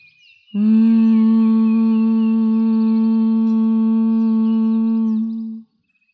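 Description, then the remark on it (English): A single sustained closed-mouth hum, like a bee's drone, made while exhaling after a deep breath in through the nose in a breathing exercise, hands braced on the sides of the head. It holds one steady low pitch with a buzzing, harmonic-rich tone for about five seconds before stopping, with no talking. “Now take a deep breath in through your nose and exhale, humming with your mouth closed like a bee.”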